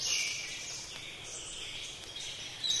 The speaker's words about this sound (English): So we're going to let the birds chirp some more.